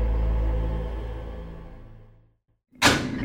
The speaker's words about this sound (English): My mother always said I was lucky, so let's get that door open.